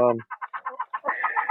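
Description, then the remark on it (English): An older laying hen clucks near an egg nest in a quick, steady series of short clucks, then breaks into a longer, drawn-out warbling call. No one speaks. “So these older chickens, their eggs just shells get thinner and thinner.”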